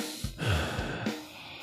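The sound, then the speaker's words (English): A loud breath rushes into a microphone held right up against the speaker's face, a sharp inhale followed by a long airy exhale lasting over a second, with no talking. “I'm concerned a little bit about people hearing me breathe.”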